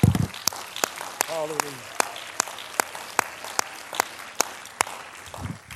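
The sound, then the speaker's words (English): An audience claps their hands to magnify God in a steady, even rhythm, sharp crisp claps repeating roughly twice a second, with a brief voice calling out over them partway through. “Somebody clap your hands and magnify God.”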